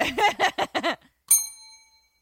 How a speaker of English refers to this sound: I'll give a bell for you.